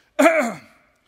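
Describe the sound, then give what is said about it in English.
A single rough throat clearing bursts out sharply, a raspy, voiced rumble that fades over about half a second into silence, with no other speech around it. “I cannot get this out of my throat.”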